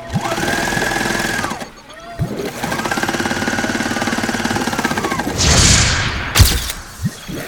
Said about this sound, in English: Now I simply use our multi-dimensional sewing machine to literally put a stitch in time.